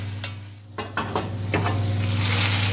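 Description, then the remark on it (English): Broccoli frying in oil in a pan with a crockpot lid over it: a steady hissing sizzle that grows brighter toward the end, broken by a few quick scraping clatters of a utensil stirring, over a low constant hum. “Ooh, these broccolis are starting to smell really good as well. In a fried broccoli kind of way.”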